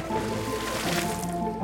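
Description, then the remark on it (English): Water splashes and sloshes steadily for a moment as a bag holding a Kraken is tipped into a salt water tank, a fairly loud wet churning with no distinct single impact, over a soft tonal background hum. “Johnny carefully tips the bag into the tank. Splash!”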